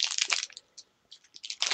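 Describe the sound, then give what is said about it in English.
Crisp crunching of salted chocolate-covered crickets, handmade in San Francisco, being chewed, with dense bursts of crackling at the start and end and a few softer, wetter chews in between. No one speaks. “Salted chocolate crickets. Handmade in San Francisco.”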